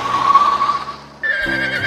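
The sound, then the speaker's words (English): A horse neighs loudly, a single drawn-out whinny that starts bright and shrill, then drops into a wavering, lower-pitched shudder over about two seconds. “What are you doing with a horse?”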